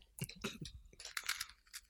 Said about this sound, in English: Ooh, that's a fucking crunch. Mmm. Excellent crunch. These cookie butter Oreos get my seal of approval.